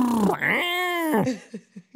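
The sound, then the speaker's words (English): A voice imitates the noise a toddler makes playing with toy cars: a sustained, gliding vroom rising and falling in pitch for over a second, then three short, clipped bursts. It's clear, with no other talking. “Okay, this is another great toddler noise. This is them playing with cars.”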